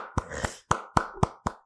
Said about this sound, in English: Y'all suck because y'all are not clapping, and I know y'all not clapping, but it's cool. I give myself a hand clap.